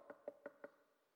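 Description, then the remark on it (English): Four quick knocks rap on a door in an even rhythm, clear, then fade into quiet with no voices. “So around 5, there was another knock.”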